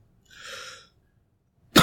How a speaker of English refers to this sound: Stop coughing